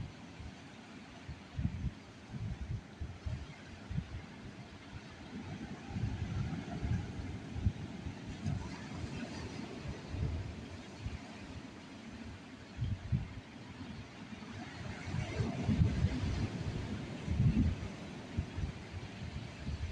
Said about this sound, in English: but I think I'm going to listen to the ocean waves a little longer and then go off in search of sandwich and juice.